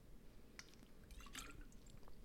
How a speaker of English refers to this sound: If not, I want you to pause the podcast or keep listening as I also chug water. And let's drink water and hydrate our hot pods really fast.